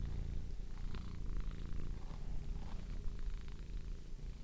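A cat named Kachu purrs steadily, a low continuous rumble with a gentle rhythmic pulse, quiet but clear and uninterrupted, with no voices.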